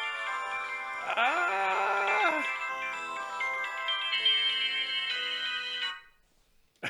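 A Nokia mobile ringtone melody plays as a bright, steady string of tuneful notes for about six seconds, fairly loud, before cutting off abruptly into near silence.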